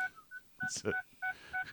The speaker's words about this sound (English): My truck is beeping at me because I'm trying to back up. I thought it was a radar detector or some Florida shit.